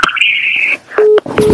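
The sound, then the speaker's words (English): Electronic telephone keypad tones sound in short bursts as someone dials to call back: a longer high beep, then a couple of brief lower tones in quick succession, loud with no talking. “Can you call back? I'm going to call back right now.”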